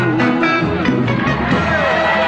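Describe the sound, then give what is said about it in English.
A live concert crowd roars and cheers loudly after a song, a dense, sustained wash of voices and whoops that stays strong for the couple of seconds heard. “The crowd loses it.”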